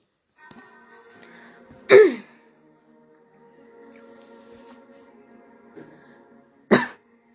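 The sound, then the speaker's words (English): Two sharp coughs from a person with a scratchy voice break a quiet stretch, one early and one near the end, with low murmuring noise in between. “So my voice is kind of a little scratchy. That's why I've been coughing.”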